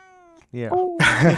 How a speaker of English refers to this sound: Did you squeeze that cat to make it say something? No, she's hungry. Just a little bit. She's also very hungry, Hungry. so. It's not squeezing, it's hugging.